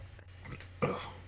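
A single loud, low, croaky burp after drinking stout erupts partway through after a quiet moment, trailing off briefly over a faint steady hum.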